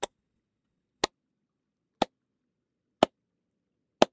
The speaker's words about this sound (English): I'm clapping. I think I heard the first clap.